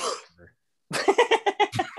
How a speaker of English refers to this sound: that was a sneeze, by the way. It wasn't it was a sneeze.